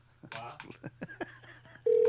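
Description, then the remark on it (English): A smartphone voice-dialing a call: a short, clipped automated voice announcement, then a steady, loud ringing tone starts abruptly and holds at the end. “Call Bill Lee. Calling Bill Lee.”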